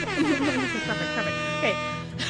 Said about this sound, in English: You want me to put an air horn in our drama pod? Okay, I'll do it.